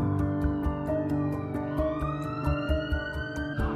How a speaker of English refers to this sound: Familiar sound of a police siren in Bruce Grove High Road there. Look. Welcome to Tottenham.